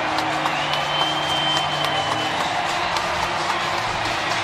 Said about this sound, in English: And this crowd can celebrate as the Phillies' season will continue. They have taken out the world champs.